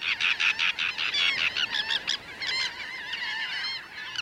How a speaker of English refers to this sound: The shallow waters and wide mudflats before us this day are alive with thousands of gulls, terns, and shorebirds. We're at the Bolivar Flats Shorebird Sanctuary on the tip of the Bolivar Peninsula opposite Galveston, Texas.